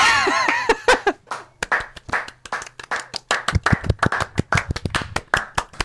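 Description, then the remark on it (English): Sharp hand claps ring out in a steady run, at first uneven and mixed with a brief burst of laughter, then settling into a loud, regular rhythm of distinct claps. “FX, clapping.”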